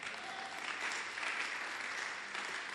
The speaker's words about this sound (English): I'm sure you are clapping for me today because my wife is here. Last week you were not clapping for me.